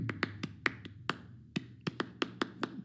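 A close-up syncopated hand-clap pattern: about a dozen crisp, sharp claps in uneven groupings with a brief pause midway, moderately quiet against a low steady hum, with no talking.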